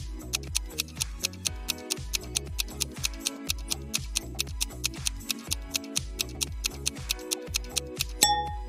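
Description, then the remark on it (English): A countdown timer ticks steadily and quickly, clear, over a low pulsing rhythmic bed, with a sharp bright hit just before the end; a timer ticking down to an explosion in five minutes. No one speaks. “And in front of the third exit, there's a timer ticking down to an explosion in 5 minutes.”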